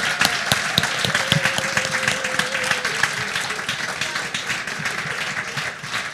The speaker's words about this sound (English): Can we all stand up and give them a huge round of applause? Lass uns mal aufstehen und für sie klatschen.